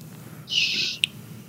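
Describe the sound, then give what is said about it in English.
A sick pet cat named Snowbell lets out a single strained, raspy meow lasting about half a second, high and hoarse, followed by a brief sharp click over a low steady hum. “Oh, dang, my cat is meowing.”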